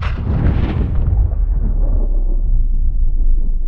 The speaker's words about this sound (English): Okay, back to recording explosions.